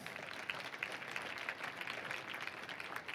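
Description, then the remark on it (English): An audience claps together as a clap offering to the Lord in a dense, steady burst of applause, many hands overlapping into a continuous crackling wash with no speech over it. “Go ahead, give the Lord a clap offering.”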